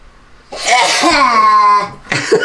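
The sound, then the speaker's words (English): A person fakes an exaggerated cartoon-style sneeze: a loud, drawn-out voiced wind-up bursting into a breathy blast, followed briefly by another vocal sound. “That was my best cartoon sneeze I could do.”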